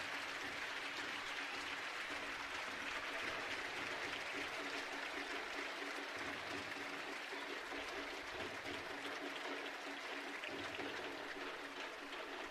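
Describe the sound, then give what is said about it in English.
Sustained applause from a large stadium crowd at a soccer match as player Chicharito is stretchered off the field, a dense, steady wash of clapping that holds at an even level for the whole stretch, with no voices standing out. “And a round of applause now as they stretcher Chicharito off the field.”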